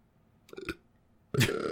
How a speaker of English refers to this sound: I burp a lot now too, sorry.